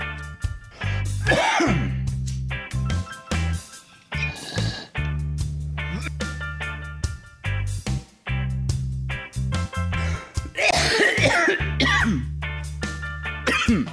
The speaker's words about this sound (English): I'm totally not choking to death. Clear my throat a little bit, sure, but I mean, I seriously, I can be, you know, hit under the table coughing by a vape, so that's no big deal.